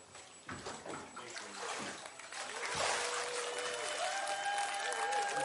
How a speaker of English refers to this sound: Come on, let's give God a great hand clap and a shout of praise for his goodness and his mercy.